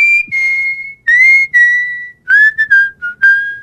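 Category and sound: human body sound, person whistling a tune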